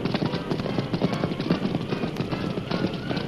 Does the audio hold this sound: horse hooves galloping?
yes